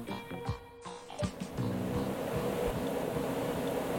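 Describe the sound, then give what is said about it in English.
Air conditioning runs with a loud, steady whooshing roar and a low droning hum, which settles in after a second or so of uneven knocks and rumbling. “It's a crazy amount of air conditioning happening right now.”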